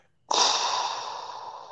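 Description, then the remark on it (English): A single long, hissing breath through a self-contained breathing apparatus (SCBA) respirator mask, starting abruptly and holding steady for over a second before slowly easing off, loud with no talking. “That's exactly what a SCBA sounds like.”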